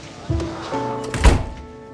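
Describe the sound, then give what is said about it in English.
The door of Ted's office shuts with one solid thunk, preceded by softer bumps and shuffling, against a faint steady background hum. “But as soon as she walks into Ted's office and shuts the door, the team goes away.”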